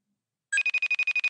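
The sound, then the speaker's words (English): A brief burst of a phone ringing tone of an outgoing call to Daniel McPherson, a rapid electronic trill of about nine quick high-pitched pulses, clear, with no voices or other sounds around it. “Hopefully he's going to pick up his phone.”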